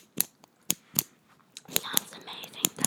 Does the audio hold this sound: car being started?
no